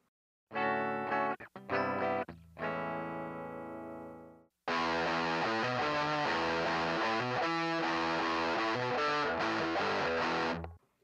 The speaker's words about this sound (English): So, let's listen to a demo and see what that legendary Proco Rad distortion sound can do for you.